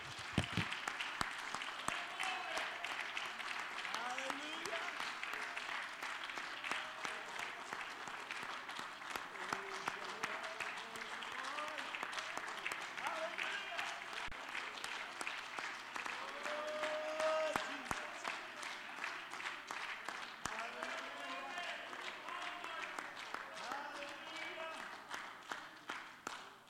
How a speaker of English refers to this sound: But you just love Jesus. If you are one of those people, would you just give a mighty hand clap unto the Lord?